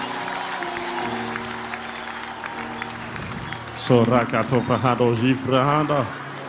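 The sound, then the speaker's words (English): An audience claps in praise of Jesus in a steady, dense wash of applause over sustained low keyboard tones, then a loud, emphatic voice breaks in over the clapping for the last few seconds. “I can tell you an applause for Jesus.”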